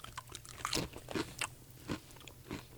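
Crisp, crackling crunches of someone chewing all-dressed potato chips, about half a dozen sharp bursts at an irregular chewing rhythm, fairly loud and with no talking.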